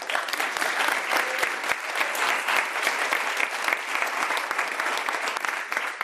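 A crowd claps steadily in sustained, dense applause for a panel of activists just introduced on a Friday night, a broad wash of many hands at moderate loudness with no voices rising above it.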